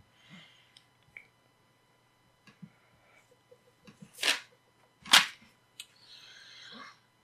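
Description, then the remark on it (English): Two sharp whip cracks split the quiet, a few seconds apart, each a loud snapping burst, with faint rustles and small clicks around them and a brief swishing noise near the end. “You want to get the whip?”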